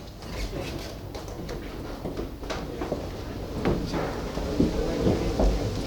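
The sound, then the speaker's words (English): River water that powers a mill rushes steadily in a continuous, full-bodied wash with a low rumble underneath, broken by a few brief knocks and splashes throughout. “So we can just hear the sound of the river here, can't we?”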